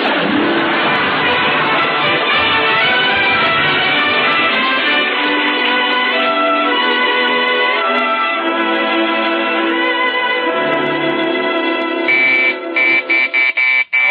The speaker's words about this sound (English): Okay, we're coming. Who in the world could be ringing the doorbell at this hour of the night?